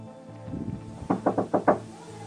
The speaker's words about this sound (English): Martin gives the signal, and they smash down the door.